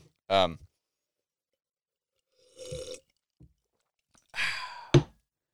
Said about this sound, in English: let me take a sip for this shit.